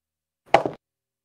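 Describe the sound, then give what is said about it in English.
A die rolled for a perception check in a tabletop role-playing game clatters loudly across a table in a quick burst of two or three hard knocks lasting a fraction of a second, with silence on either side. “That's a loud dice.”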